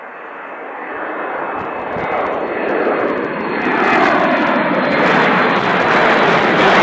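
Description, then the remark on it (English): An airplane engine roars steadily overhead, a broad droning rush that swells louder as the aircraft passes by on its last flight out of the city airport, with no voices. “We both, one of many people that would, that jumped at the chance to, have an opportunity to fly this airplane on its last flight out of the city airport.”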